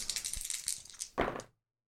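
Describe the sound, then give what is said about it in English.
An action die and two challenge dice are rolled in a tabletop role-playing game, rattling and clattering for about a second in a dense run of sharp clicks, then a louder tumble as they land and settle before silence. No one speaks. “7 on the action die, a 7 and an 8 on the challenge dice for a miss.”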